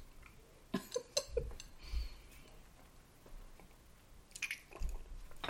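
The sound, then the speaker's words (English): Quiet sipping of drinks, a Douce and a vodka mix: several short wet slurps and lip smacks with small clicks, scattered across a few seconds with pauses between. No one speaks. “Take a sip of this Douce. Okay. And I'll take a sip of my vodka mix.”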